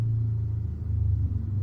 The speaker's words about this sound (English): I have an opinion that this street is getting a lot of motorcycle traffic today.